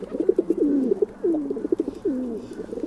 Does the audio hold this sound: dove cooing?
yes